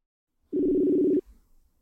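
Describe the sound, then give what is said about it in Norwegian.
A single steady telephone tone, a flat electronic beep lasting under a second, fairly loud, cutting off abruptly into near silence with no voices, as a call is placed from Oslo to Denmark. “bor i Danmark, så derfor må vi ha henne med på telefon.”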